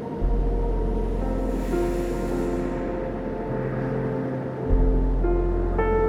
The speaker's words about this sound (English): Breathe now and find the calming rhythm of the waves.